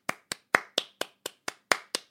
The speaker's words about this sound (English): Applause! Oh, thank you.